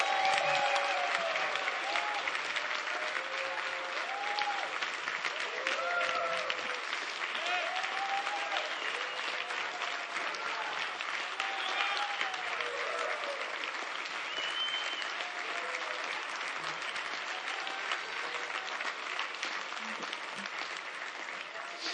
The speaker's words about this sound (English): So anyway, I was wondering if the guys would stand and give a strong, mighty round of applause for everyone who's been affected by children in any way.